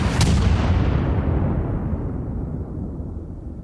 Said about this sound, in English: Between the blast and the gunfire afterward, seven police officers were killed, along with four civilians.